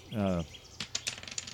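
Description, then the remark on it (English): A short voiced sound opens, then three small dice clatter and tumble across a hard surface, a burst of quick rattling clicks that gradually settle, landing on one, four and five. “I think we can go with the three dice on this one, though, especially because it ties in with your concept so well.”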